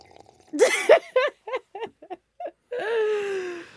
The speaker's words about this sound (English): I was just sipping my coffee. That's it. Yeah, it was a very loud sip.